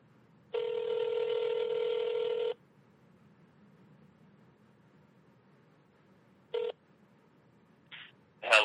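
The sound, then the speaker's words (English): Telephone tones as a call is placed to someone in Minneapolis: a steady electronic beep lasting about two seconds, a pause, then a shorter tone burst, with a brief voice just starting at the end. “I am going to give him a call right now, and we are going to be doing a mobile episode of Stream of Thought.”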